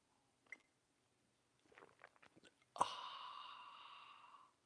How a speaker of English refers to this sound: Fill it with your favorite liquid. I like coffee. And join me now for the unparalleled pleasure, the dopamine hit of the day, the thing that makes everything better. It's called the simultaneous sip, and it's happening now. Go.